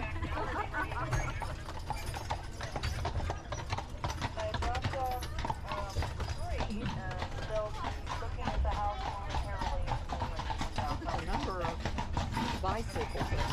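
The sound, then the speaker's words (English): Steady clip-clop of a horse's hooves pulling a horse-drawn taxi carriage on a ride to lunch, sharp rhythmic strikes, with faint voices murmuring in the background throughout. “Next, we take a horse-driven taxi ride to lunch.”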